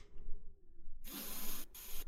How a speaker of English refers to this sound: The dragon takes a big sniff of the cart as it lowers its head and looks.